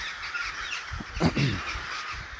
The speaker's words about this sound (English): Just being accosted by 1,000 crows.